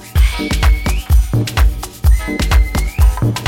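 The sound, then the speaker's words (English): Crowd whistling with rising, sliding tones rides over a loud, pounding bass-heavy dance beat, the whistles sounding twice in quick bursts within the music. “We got a whistle massive.”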